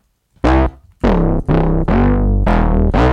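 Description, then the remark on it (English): A loud, gritty distorted synthesizer growls through about five sustained bursts, its buzzy harmonics bending and sliding in pitch between notes, with no voices present. “It's growling.”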